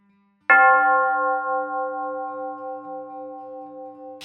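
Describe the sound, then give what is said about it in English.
A single bell is struck once, its clear ringing tone sustaining and slowly fading over several seconds with a gentle wavering shimmer. No voices accompany it. “Ring the bell and let's go.”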